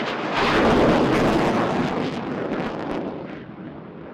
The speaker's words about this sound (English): The Air Force fighter jet flyover, described by retired Major General Julian Burns, was one of two such tributes that day.